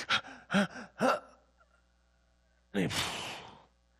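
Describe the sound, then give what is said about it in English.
A voice demonstrates gasping for breath, as when pulling up to breathe while drowning or hanging on a cross: three short, sharp, voiced gasps in quick succession, a brief pause, then one long, breathy, noisy exhale. It is fairly loud. “And literally what happens for hours and hours and hours on the cross, you're pulling and gasping for breath.”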